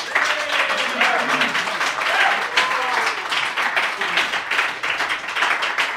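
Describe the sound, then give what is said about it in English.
A crowd applauds steadily, welcoming a band, with dense clapping for several seconds at a consistent loudness and faint voices and cheers mixed into the sustained burst. “let's say hello and give a round of applause to the …”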